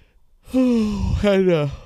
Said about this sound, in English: I'm sorry, yawn. It's pretty early here.